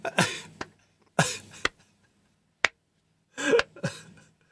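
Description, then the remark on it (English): A few slow, deliberate hand claps applauding the next slide of a presentation, roughly one per second, each sharp and crisp, mixed with short breathy bursts like coughs or puffs of laughter, and no speech. “I'm applauding our next slide.”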